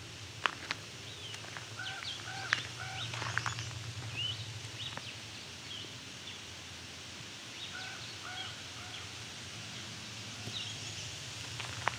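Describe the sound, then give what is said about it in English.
Short, clipped blue-headed vireo song phrases repeat at intervals, with a raven calling in between, all moderately faint over a steady hiss of outdoor background noise. “Yes, we have a blue-headed vireo. And a raven.”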